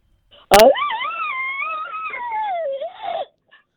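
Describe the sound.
A person imitates an elk bugle: a sharp burst, then a long, wavering high-pitched whistle that slides and bends for nearly three seconds before dropping off.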